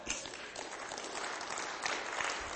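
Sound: audience clapping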